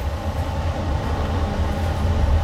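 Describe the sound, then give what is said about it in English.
A steady, heavy low rumble of an overnight train coming to a stop, heard on board, with continuous rolling noise and faint rattling throughout. Nobody speaks. “I think the train just stopped.”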